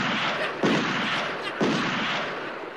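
Two loud gunshot sound effects about a second apart, each a sharp blast with a booming, noisy tail over a steady rushing background. No one speaks.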